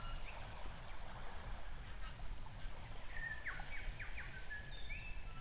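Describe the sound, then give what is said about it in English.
Birds call by a lake, with short bright chirps and a few honking, goose-like calls over a steady low outdoor rumble, not very loud. “You can hear birds again.”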